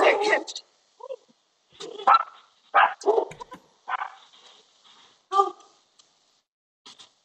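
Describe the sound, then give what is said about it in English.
Several dogs bark in short, irregular bursts, with a few higher yips and whimpers between them, reacting to a man they can see outside. Some brief human voice sounds mix in. “Sorry, my dogs are crazy.”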